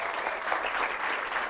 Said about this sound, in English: Hey, good morning, church. Hey, man, you guys look great. You sound great. Can we give it another round of applause for the choir? Goodness gracious.